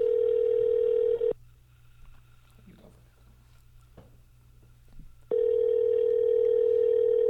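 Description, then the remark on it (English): A loud, steady telephone dial tone hums for about a second, drops to near silence with faint scattered clicks, then returns just as loud and continues to the end, as a phone call to Wall Drug is placed. “And so let's get him on the phone and get started.”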